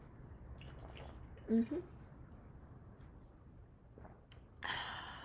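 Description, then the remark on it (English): Someone drinking a glass of water: a couple of soft gulps in quiet room tone, then a short shuffling noise near the end as the glass is moved or set down. “Hang on, we're going to pause and take a drink of water because I'm thirsty.”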